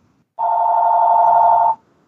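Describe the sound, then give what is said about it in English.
A single steady electronic telephone ring sounds for just over a second, a loud, even tone with no talking over it, then cuts off abruptly into quiet. “Got to turn off phones.”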